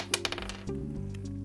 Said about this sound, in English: Okay, that is a 4. That first roll went somewhere that I cannot find. So that second dice you heard was actually the first roll I saw.